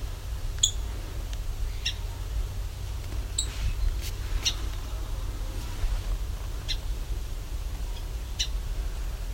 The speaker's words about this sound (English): That's a song sparrow. Ticking.